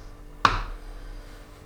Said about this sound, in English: Make a tiny cut in the candy and stick it on the edge of the glass.